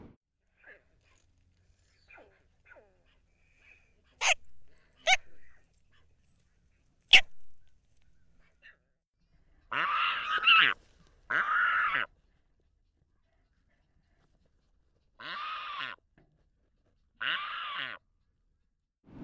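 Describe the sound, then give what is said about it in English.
Brown pelican nestlings give harsh, raspy begging calls for food, four drawn-out squawks arriving in two pairs, after a scattering of sharp clicks and faint chirps. No talking. “I do have some recordings of them as nestlings, like all baby birds, and just babies in general. They're pretty noisy and make begging calls for food.”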